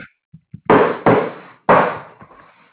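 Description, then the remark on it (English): Hammer banging while a floor is being put in: three loud, sharp metallic strikes with ringing decay, irregularly spaced, preceded by a few soft taps, and no voices. “I hear somebody banging a hammer.”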